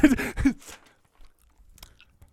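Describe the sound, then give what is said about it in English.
Mouth chewing: a couple of loud, wet, crunchy bites at the start, then fainter, scattered smacks and clicks as the chewing continues quietly. “You're chewing could like you a college football coach.”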